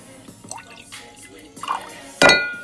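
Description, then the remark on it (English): Wine poured into a glass, heard as a few wet drips and trickles, then a sharper splash and clink of glass near the end. No talking. “We gonna pour it up real quick.”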